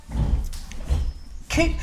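A door is opened to let Koopy the dog out, with a few short clattering bumps and a scrape of the latch and frame, followed by a louder knock as it swings.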